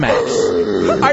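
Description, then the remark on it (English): A person speaks in a low, gravelly growl, imitating a wolverine's roar in one loud, continuous rumbling burst of about a second. “Here's my pet Wolverine.”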